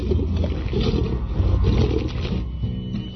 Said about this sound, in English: Let's listen to a Wampa eating a Hot Pop right now.